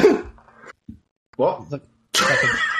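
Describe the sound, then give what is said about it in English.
A man coughs himself out in a corner in several harsh, raspy bursts separated by brief pauses, loud, with the final fit the longest and roughest. “He's coughing himself out in the corner, and it's like, you're right?”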